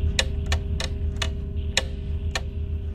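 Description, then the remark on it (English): An alarm clock, pushed towards a black hole, ticks with sharp clicks that gradually space out, slowing as they go, over a steady low hum. Six ticks in all, no voices. “Here's an alarm clock. Let's push it towards the black hole.”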